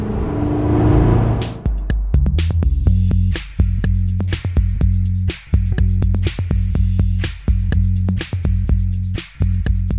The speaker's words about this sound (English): Oh my God. Just loves to step out. Yeah, it always wants to step out sideways. The traction control and feathering of the throttle help keep it in line, but listen to that. It's just so wild, so untamed.